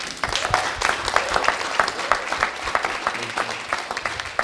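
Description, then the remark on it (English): A crowd applauds the speaker's wife steadily, many hands clapping in a dense, even patter that holds at a moderate level throughout without letting up. No one speaks over it. “I'm sorry I wouldn't clap for everybody, but I'm a bit biased, So please forgive me.”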